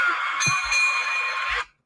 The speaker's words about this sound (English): When the bell rings, it initiates fight night.